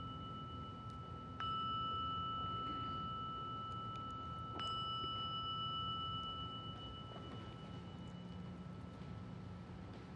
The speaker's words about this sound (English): Sensing that when you hear the sounding of the gong, that you can bring this relaxed attentiveness into a continued listening.